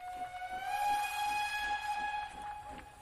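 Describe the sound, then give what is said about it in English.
A distant train horn from an approaching train carrying Colonel Theodore Roosevelt blows one long, steady, slightly wavering note for about three seconds, carrying over faint rumbling background noise with no voices. “Journalist Charles Post was preparing to move the cars onto a new track when they heard a horn from the distance.”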